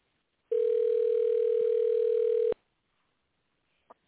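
A single steady telephone ringing tone from an outgoing call sounds for about two seconds, then cuts to silence, followed by a faint click near the end. No one speaks.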